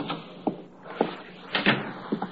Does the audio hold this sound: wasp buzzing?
no